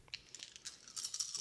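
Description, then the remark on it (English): A quick burst of three dice rattling, with rapid, bright clicks and clatters that grow busier toward the end. The sound is fairly soft, and no one speaks. “And I'll use 3 of my dice.”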